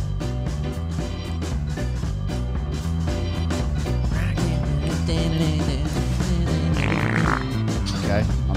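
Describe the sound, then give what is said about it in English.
Loud, continuous fart sound effects play back to back for several seconds, dense, buzzy and layered, with no pauses between them. “Stop playing farts.”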